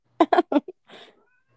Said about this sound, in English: That's crazy cat again.